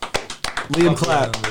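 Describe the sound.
Several sharp hand claps in a quick, fairly steady rhythm, with a voice talking or calling out over the middle of the clapping.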